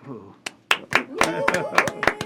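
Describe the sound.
Scattered, irregular hand claps from an audience ring out sharply over a murmur of voices, building into looser applause across a couple of seconds.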